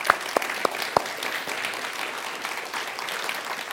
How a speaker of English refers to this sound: So I'll just give you a round of applause.